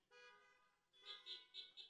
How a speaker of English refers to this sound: I'll take that. So everybody here, either you're honking just so you can be heard or you've really thought about it.